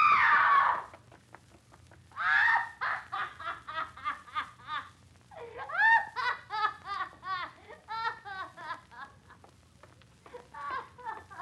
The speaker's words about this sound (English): She screamed. A trick. She's playing a trick. Like the Ripper was at her.